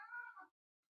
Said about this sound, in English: Boy. Okay, so there's some cats.